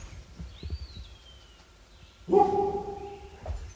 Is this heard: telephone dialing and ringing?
no